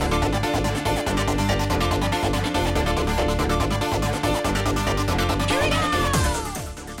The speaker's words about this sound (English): Meow. Meow. More cat content.